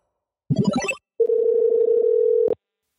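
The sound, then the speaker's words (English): A brief burst of telephone tones gives way to a steady, slightly warbling dial tone that holds for over a second, then cuts off with a sharp click. No one speaks. “Thanks for pushing play and answering your phone.”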